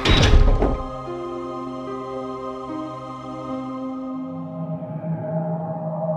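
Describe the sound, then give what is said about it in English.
A heavy iron door slams shut with one loud, deep thud, followed by a long metallic ringing hum that slowly fades over several seconds. No voices. “Sam and I walked into the golden light, and the iron door closed behind us.”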